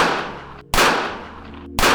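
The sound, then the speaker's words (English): Three loud gunshots fired into a car ring out about a second apart, each a sharp crack followed by a long echoing decay, with no voices present. “Then three gunshots penetrated their vehicle.”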